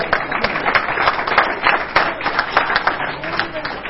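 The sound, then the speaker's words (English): An audience at a funeral service claps their hands for God in a dense, steady burst of applause lasting several seconds, with a murmur of voices mixed in. “Don't give God a hand clap.”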